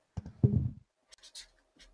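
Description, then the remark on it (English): A pen scribbles on a stiff game card without drawing on it: a low rubbing scrape, then a pause and a few short, dry scratchy strokes, fairly quiet with no voices. “Use a game card. It doesn't work. It doesn't draw on that.”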